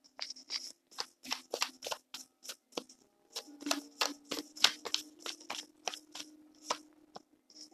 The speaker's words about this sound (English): Okay, I have the Taramucha deck. We're going to be shuffling for some cards.